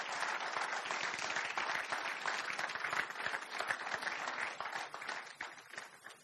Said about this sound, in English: Do you want to jump out the box and give him a round of applause? Good lad.